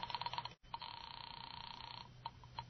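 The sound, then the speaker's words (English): A telephone rings with a buzzy, sustained tone, broken into quick pulses at the start and followed by two short bursts, heard alone at moderate volume, as a call is placed to the landlady at Carlton Apartments. “All right. I'll phone the landlady.”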